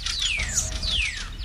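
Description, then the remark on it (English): Several birds chirp over one another in a busy, overlapping jumble, with bright descending whistles repeating against a low background rumble. No one speaks. “Okay, bird chaos.”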